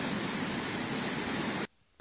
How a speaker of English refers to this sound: Rain? Thunderstorm. A rip rain.